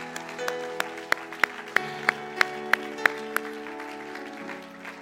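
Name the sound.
audience clapping and cheering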